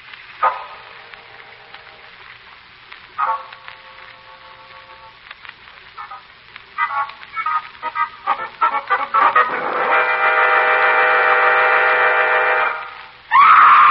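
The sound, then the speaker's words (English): A woman screams several times, with short shrill cries early on, then a long, loud, strained wail that holds for a few seconds before a final sharp burst. No one speaks. “Lamont, that scream.”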